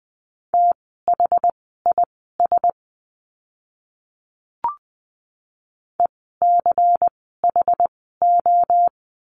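Crisp, steady-pitched Morse code beeps rapidly key out a word in dots and dashes at 20 words per minute, sent twice with a silent pause and a soft click in between.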